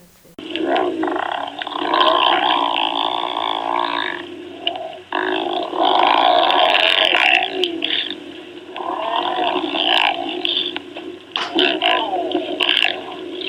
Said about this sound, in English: Have you ever heard a lion growl over its prey? Well, you're about to.